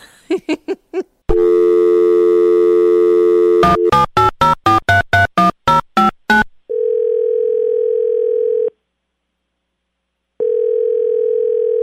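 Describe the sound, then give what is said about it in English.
A few short beeps give way to a steady telephone dial tone, followed by a quick run of about ten keypad tones, then long ringing tones separated by a silent pause. “We wanted to make a phone call to our good friends.”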